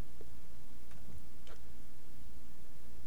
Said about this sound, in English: Is your biological clock ticking like this?